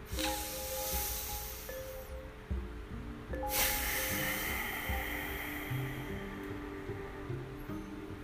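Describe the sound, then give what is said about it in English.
Breathing in and out through the nose with a soft, rushing ocean-like hiss, two long airy breaths rising and fading over a low steady hum, with no talking. “So that ocean sound that you heard at the end, so you breathe in through your nose and exhale out through your nose.”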